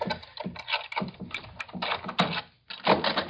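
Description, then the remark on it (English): Metallic clicking and jingling of keys being tried in a door lock, rattling and scraping in a quick irregular series of taps with a brief pause before more fumbling. “Try your keys first.”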